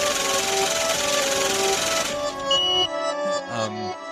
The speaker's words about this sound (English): all right, cue me adding in the money counter machine that then does the beep at the end.